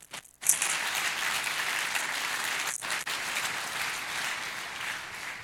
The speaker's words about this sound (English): Let's clap our hands and thank God for His Word.